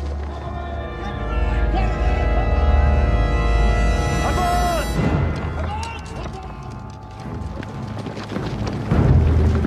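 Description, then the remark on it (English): A mass of cavalry horses gallops into battle in a film scene of the Battle of Falkirk, a heavy, continuous rumble of hoofbeats layered under loud orchestral music with indistinct voices mixed in, the thundering charge swelling again toward the end. “And I don't know, just hearing the music and the horses and the gear that the men are wearing, I guess armor as well, mm-hmm.”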